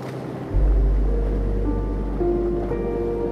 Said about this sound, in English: Floating in the loving embrace of the sleepy ocean.